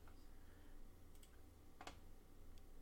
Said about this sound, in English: I'm just guessing what I'm typing